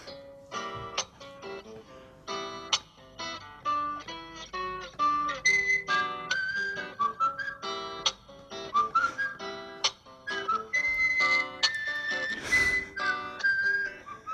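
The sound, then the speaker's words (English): A person whistles the theme tune of a horror video game, a melodic tune with distinct notes in a steady, eerie rhythm for about fourteen seconds. No talking. “Get ready for the whistling.”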